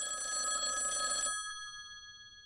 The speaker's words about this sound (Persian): زنگ هراس‌آور تلفن و صدای نرم و ملایم از پشت خط